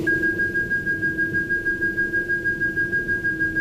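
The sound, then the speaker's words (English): A steady, sonar-like electronic audio reference tone for telescope guidance hums alone with a high whine over a low drone, pulsing rapidly and evenly in volume, about five throbs per second, at moderate loudness. “Give me an audio reference for the telescope guidance. On audio.”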